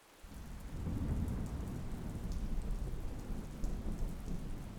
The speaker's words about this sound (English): This beautiful autumn thunderstorm starts to kick up outside.